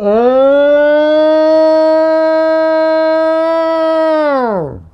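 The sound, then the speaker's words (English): A man's voice imitates a Bigfoot call, a siren-like wail: one long, loud sustained howl that rises at the start, holds steady for several seconds, then drops away sharply at the end. “And then, of course, the Bigfoot yell the guy does is just incredible. The Bigfoot call.”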